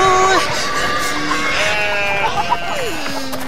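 Goats bleat loudly, several wavering, overlapping calls running together over a few seconds, with a low gliding bleat trailing off at the end.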